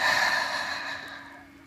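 A deep, airy breath drawn in, a single steady rush of air that gradually softens and fades, with no talking over it.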